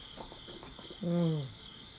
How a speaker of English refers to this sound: All the night crickets are still like chirping away. It is nighttime.